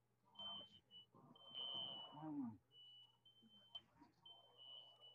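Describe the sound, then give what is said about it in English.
A high-pitched fire alarm beeps repeatedly in the background, its steady tones broken into short bursts, while voices talk and murmur over it. “With your fire alarm going off in the background?”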